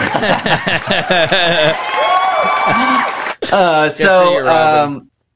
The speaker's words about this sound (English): Toss some applause on that.